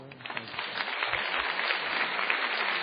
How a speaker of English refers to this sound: Welcome back. We're at an Intelligence Squared debate from so let me do that again. Can you give me another round of applause?